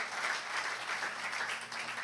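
Steady audience applause during a sermon, many hands clapping in a dense, even wash of sound at moderate volume throughout, with no voices standing out.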